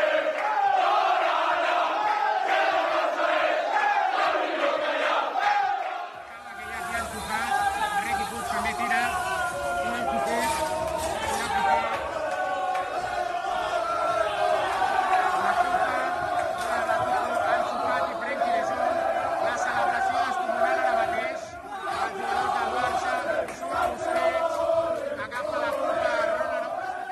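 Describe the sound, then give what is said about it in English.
The Barcelona football squad chants and sings together loudly in the dressing room, with President Joan Laporta front and centre, celebrating after beating Athletic: a dense wall of rowdy voices with shouts and cheers that swells after a few seconds and keeps going without a break. “First, you heard the Barca squad chanting in the dressing room, President Joan Laporta front and centre”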